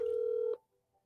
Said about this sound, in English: Is it coming through that? Is that a ringtone? It's pretty cool.